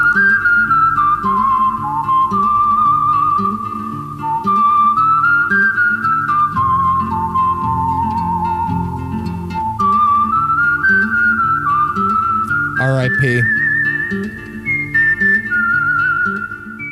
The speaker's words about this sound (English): I'm trying to think if the thing I was just whistling was from A Few Dollars More or this